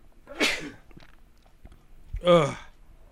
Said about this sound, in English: Gesundheit.